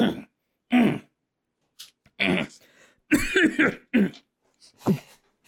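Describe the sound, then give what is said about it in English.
Several loud throat-clearing bursts and coughs come in quick irregular succession, separated by short silences, with no speech. “I'm gonna clear my throat.”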